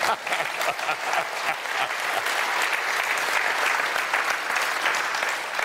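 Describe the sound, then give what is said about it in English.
Sustained applause from an audience fills the whole clip, a dense, steady wash of many hands clapping at an even, fairly loud level with no voices standing out. “You can clap on that one.”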